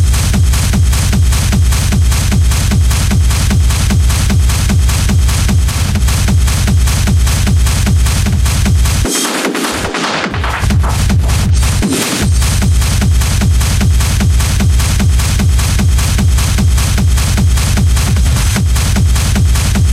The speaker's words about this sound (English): stomping.